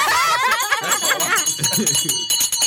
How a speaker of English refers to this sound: Hey, ring the bell. Ring it.